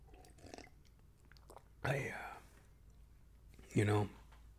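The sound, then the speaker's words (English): Someone sips water: faint mouth noises, then two short, wet gulping swallows about two seconds apart, the second slightly louder, with no talking. “Quick sip of water, folks.”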